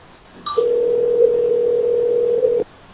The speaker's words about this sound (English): His phone's just ringing and ringing.